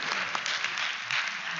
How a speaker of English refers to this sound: Okay, go ahead and clap. We'll take it.